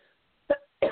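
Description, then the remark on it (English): Two abrupt coughs from a person battling bronchitis, in quick succession, the second following about a third of a second after the first, with near silence before them and no talking. “If I go on a coughing fit, you know, sorry.”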